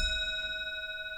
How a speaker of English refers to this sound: Oh, you're lucky it's 1 o'clock because that grandfather clock chimes once for every single hour of the day. It's 1 o'clock right now, but if it's 11 p.m., that's 11 dongs and that goes on forever.